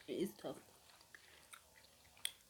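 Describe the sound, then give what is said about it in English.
Wet chewing sounds with two heavier bursts early on, then scattered quiet smacks and clicks of an open mouth working through a tough, seasoned snack. “Sorry guys, the reason I'm chewing with my mouth open because it's tough.”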